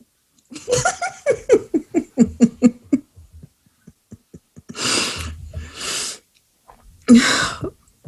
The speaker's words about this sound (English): Okay, hang on. Let me just blow my nose.